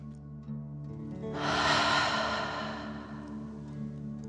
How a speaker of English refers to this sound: Breathe in through your nose, filling up your belly, and then out through your mouth, pretending you are breathing fire. Ready? Deep breath in and out.